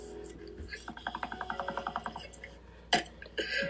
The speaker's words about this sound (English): Wow. Smoke done came out when I burped.